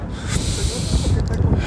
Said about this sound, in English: In order to make myself feel better, I went outside and I'm going for a bit of a walk and I'm going to do some real deep breathing.